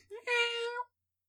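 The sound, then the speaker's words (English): A person's voice imitates a cat's meow, one drawn-out, nasal, rising-and-falling call lasting under a second, fairly loud, followed by silence. “I can do more aroused cat noise.”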